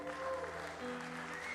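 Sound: audience cheering and applauding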